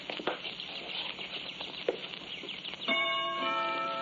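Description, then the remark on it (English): A clock in a house ticks steadily with sharp, light clicks for a few seconds, then a bright, ringing chime starts and sustains with a rich, bell-like tone. “Chimes and everything.”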